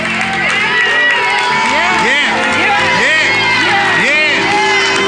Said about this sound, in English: Clap your hands, all ye people. Shout unto God with the voice of triumph.